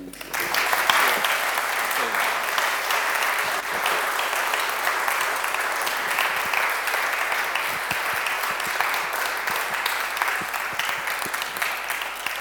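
Steady, sustained applause from an audience, a dense wash of many hands clapping at an even loudness for about twelve seconds with no one speaking over it.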